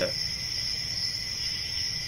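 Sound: cricket chirping sound effect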